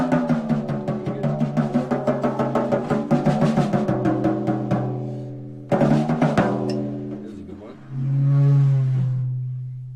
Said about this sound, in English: You're hearing a cymbal, and you're trying to find like all the different sounds that you can make from a cymbal. Mm-hmm. Or with a bow or something like that. There's different cymbal sounds that you can make, and out of toms and stuff.